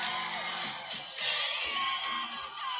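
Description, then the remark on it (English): A voice yells along loudly to music amid a noisy concert crowd, with whoops and shouting blending into a dense, sustained wall of sound. “You do hear me screaming in this one. I'm yelling the words, guys.”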